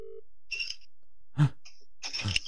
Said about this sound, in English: That sounds like rustling.